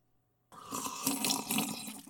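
Water pours steadily into a glass for the Prime Minister after a brief silence, a bright splashing rush that continues for about a second and a half with no voices.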